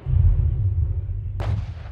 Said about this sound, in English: In front of me, I see that what used to be Oslo Central Station lies in ruins, for this is the spot where just moments ago an unnamed group of saboteurs detonated high explosives in protest at the recent appointment of Vidkun Quisling as leader.